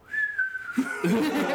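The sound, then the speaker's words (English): A single clear whistle, meant to tell someone they are in trouble, holds a long note that slides gently downward, then breaks off as a voice starts making sounds over it. “the whistle”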